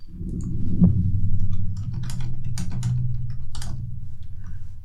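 Typing on a computer keyboard as someone looks up an actor's name, a steady run of quick irregular key clicks with a few sharper taps, over a constant low hum; no one speaks.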